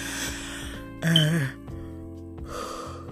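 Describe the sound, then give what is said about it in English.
A drawn-out yawn: a breathy intake swelling into a brief voiced moan, then trailing off into soft exhaled breaths. “Excuse me, I definitely just yawned.”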